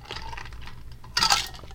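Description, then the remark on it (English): Someone drinking water: soft handling noises and small clinks, then a brief, louder clatter of a glass or bottle near the end, with no talking. “That was me drinking water.”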